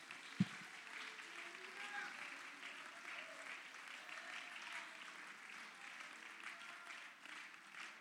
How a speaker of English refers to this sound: Go ahead and clap your hands unto the Lord for a moment.